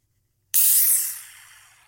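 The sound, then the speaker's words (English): A spray can lets out one sudden, loud burst of bright hissing, with a faint rough sputtering texture underneath, then slowly tapers off over about a second and a half. No one speaks. “You want to hear this sweet growl from this can?”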